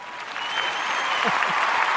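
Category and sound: sound effect, crowd cheering and applause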